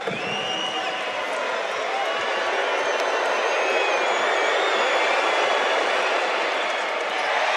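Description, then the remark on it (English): A huge basketball arena crowd of Perth Wildcats fans at a home game roars continuously after a Bryce Cotton three-pointer, a dense, loud wall of cheering and shouting with whistles cutting through, holding steady for several seconds and swelling slightly toward the end. “Have a listen to this crowd.”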